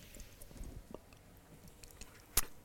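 Someone drinking water: soft, wet sipping and swallowing noises at low volume, followed by a single sharp click near the end. No one speaks.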